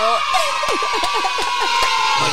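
A crowd cheers and claps in a steady, dense wash, with high whoops and shouts sliding down in pitch over the top. It sounds like a short applause-and-cheering sound effect, fairly loud throughout.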